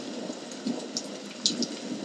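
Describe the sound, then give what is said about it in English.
Continuous rushing water with a few brief splashes breaking through at irregular moments, moderately loud, with no voices. “The wind and the rain picked up and giant waves were splashing over them.”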